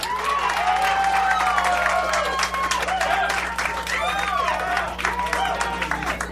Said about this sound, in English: So, pick a favorite with your applause, starting from Ben Kronberg, Dictators.